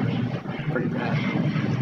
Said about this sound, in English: Hey, is that an airplane? Oh my gosh, I should have muted it. No. This is cool.